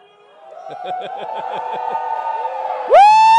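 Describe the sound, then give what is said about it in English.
A crowd erupts into sustained screaming and cheering that swells over a couple of seconds, ending in one loud, rising whoop. “So I only got one thing to say to you. Scream!”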